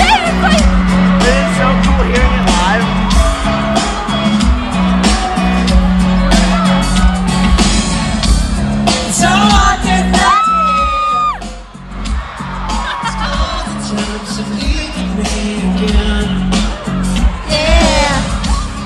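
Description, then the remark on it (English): A dense, loud roar of a concert crowd of girls screaming, with high-pitched shrieks and whoops rising over it, continuous for the whole stretch, with brief sharp cries and a thumping low rumble underneath. “I honestly, for the majority of the concert, just heard girls screaming the whole entire time.”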